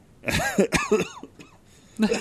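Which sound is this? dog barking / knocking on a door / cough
cough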